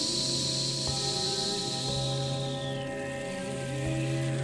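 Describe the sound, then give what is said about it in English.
A slow, steady breath let out through the mouth with an airy hiss that thins out partway through, over a constant low hum, during a guided breathing exercise. No one speaks. “repeating this on your own time, breathing in when you're ready, and exhaling with the sounds, like you're letting air out of a balloon.”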